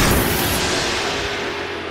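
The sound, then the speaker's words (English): A single loud, booming blast from the world's most powerful tennis ball cannon firing, its broad roar fading slowly over the next two seconds with no voices. “This is the world's most powerful tennis ball cannon.”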